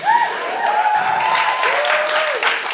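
Steady, dense audience applause fills the whole clip, with a long high whoop or cheer riding over the clapping partway through.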